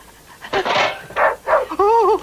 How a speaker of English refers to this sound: It's a dog.